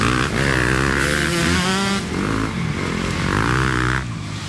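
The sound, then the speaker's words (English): Loud dirt bike engines rev repeatedly as riders weave between city traffic on the lamp-lit streets of Manhattan, their pitch climbing and dropping in quick surges, with a steady roar of traffic underneath and no talking. “riding dirt bikes through the lamp-lit streets of Manhattan, weaving between the city traffic.”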